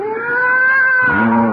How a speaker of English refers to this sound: I'd forgotten that mewing, spewing cat.